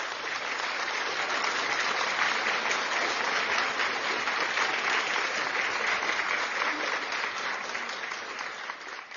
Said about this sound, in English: Glory be to God. Give a clap offering unto the Lord. Give a clap offering unto the Lord.